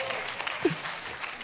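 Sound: audience applause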